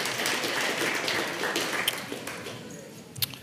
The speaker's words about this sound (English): Let's all stand as we get ready to close. Yeah, that's good. Clap.